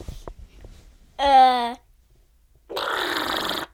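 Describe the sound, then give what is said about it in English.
A voice imitates Mickey using a jackhammer: first a short buzzing, tonal vocal burst, then after a pause a longer, rough, rattling noise held for about a second, fairly loud. “Okay, and Mickey using a jackhammer.”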